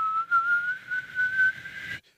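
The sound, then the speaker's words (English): A whistling tea kettle gives a steady, shrill whistle that holds one high pitch, rising slightly for about two seconds over a breathy hiss, then cuts off abruptly. “What I do want is, I guess that's a tea kettle, the one that whistles.”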